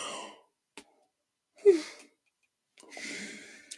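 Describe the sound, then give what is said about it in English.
A breathy yawn stretches out in a few bursts: a short intake, a voiced groan in the middle, then a long airy exhale trailing off, with no talking. “I'm about to yawn again. I'm so sorry.”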